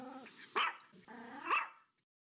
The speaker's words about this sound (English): I have to blame the dog for that because the dog's been barking all morning.